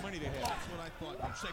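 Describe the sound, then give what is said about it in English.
The wrestler Barbarian is slammed onto a ring mat by Scott with an overhead belly-to-belly, a dull, booming thud nearly buried under continuous excited commentary and crowd noise. “Oh, overhead belly to belly.”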